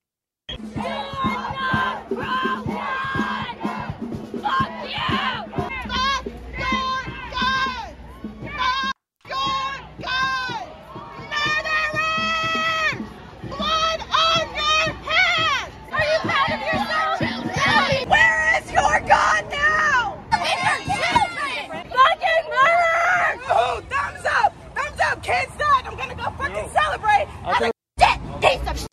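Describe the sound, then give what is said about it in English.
A crowd of protesters at the NRA convention chants and shouts continuously, voices overlapping in loud, rhythmic bursts with occasional yells rising above the mass, sustained for nearly half a minute. “Okay, so there's the protesters right there at the NRA convention, compelling arguments.”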